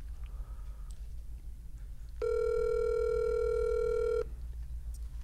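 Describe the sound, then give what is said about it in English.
A phone call to Jay-Z rings out with a single steady electronic ringback tone lasting about two seconds, clear, over a low background rumble; nobody picks up or speaks. “Let's see if we get Jay-Z on the phone right now.”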